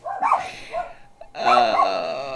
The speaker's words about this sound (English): Can you hear it? Over the dog yipping? Probably not. And, oh, there's the other dog.